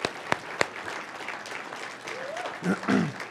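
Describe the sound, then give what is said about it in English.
A church audience applauds with steady, dense clapping, a couple of sharp louder claps near the start, and a few voices calling out and cheering over the applause toward the end. “Church, can you join me in giving her a big hand clap?”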